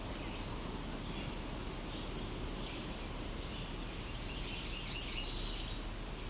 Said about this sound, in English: I don't think this bird cares I'm here.